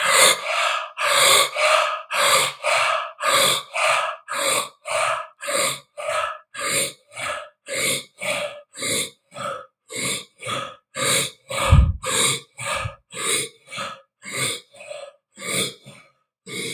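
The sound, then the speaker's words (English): Deep, forceful breaths of a breathing exercise in a steady rhythm, roughly twenty-five inhales and exhales in quick succession, loud, with no talking. “Breaths, 13 breaths, breathing super deep.”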